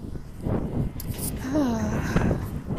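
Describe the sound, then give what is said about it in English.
Steady low rumble of strong wind buffeting the microphone, fairly loud throughout, with a voice briefly audible beneath the blustery noise. “Damn, it's really windy.”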